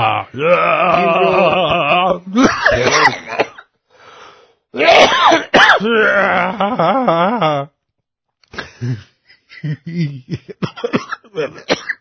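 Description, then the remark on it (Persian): A loud coughing fit: long raspy, strained hacking in several bursts separated by brief pauses, trailing off into a run of shorter, sharper coughs. “من فرمانده قوی نیستم، به سرفه افتادم، اومدم قوی بشم.”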